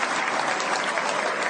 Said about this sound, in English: And here is Judah Maccabee entering the Great Hall. He's being applauded by friends, supporters, and even some members of the media.